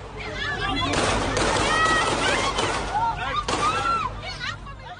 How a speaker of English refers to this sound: God, it was terrifying to watch that, wasn't it? To hear all those gunshots, to hear the tat, tat, tat, the sequence of shots, to hear the screams of people running.